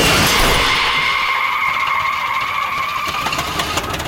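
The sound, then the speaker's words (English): A Studebaker car skids loudly to a stop on a winding country road after its clutch blows out, tires squealing in a sustained high screech over a rough, grinding engine noise that slowly fades. No one speaks. “she knew there was no going back now, or forward for that matter, once she blew out the clutch on Harold Studebaker.”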